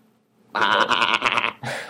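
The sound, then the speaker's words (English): A person's voice imitates a sheep, letting out one loud, wavering, nasal bleat of about a second, then a brief second bleat, with nothing else around it. “He's a sheep. Don't make fun of him.”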